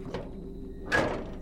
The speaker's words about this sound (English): I'm trying, but the door didn't open all the way.